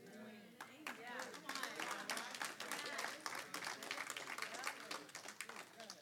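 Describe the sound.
An audience in a church breaks into steady applause, with dense overlapping claps lasting several seconds and voices calling out underneath, fairly loud throughout.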